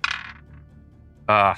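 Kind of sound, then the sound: dice being rolled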